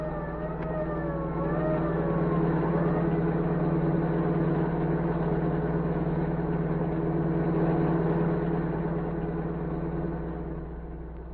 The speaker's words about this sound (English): As the general's car sped toward the border, orders cracked out.